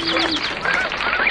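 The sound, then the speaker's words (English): A gray jay calls with a quick series of four short, high, rising notes, followed by softer whistled notes over a steady rushing background, clear. “You were absolutely right, the gray jay.”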